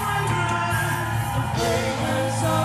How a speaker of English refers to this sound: Are you shouting in this house? Are you shouting in this house? Are you shouting in this house?